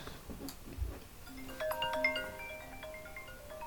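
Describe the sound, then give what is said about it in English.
A phone ringtone plays a short electronic melody of bright, sustained tones, moderately quiet, with no one talking over it. “Oh, for fuck's sake, who's ringing now?”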